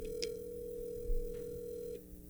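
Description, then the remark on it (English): A phone ringback tone on an outgoing call: one steady, buzzing ring lasting about two seconds before cutting off, heard through the receiver with faint clicks and line noise, no one speaking. “This is going to be my last call.”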